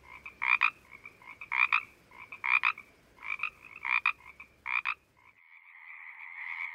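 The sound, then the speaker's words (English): Pacific chorus frogs calling: six loud, raspy two-part croaks in a steady rhythm, then a softer, drawn-out continuous trill. No voices are heard. “These are Pacific chorus frogs, once prolific and common around California, and providing an outdoor nighttime soundtrack for many Hollywood movies.”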